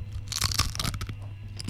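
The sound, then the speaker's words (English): A crisp crunch of teeth biting into a chip, followed by a quick series of brittle crackling bites and chewing, with a steady low hum underneath and no talking. “That sounds like a chip to me. First hint. That's because it is.”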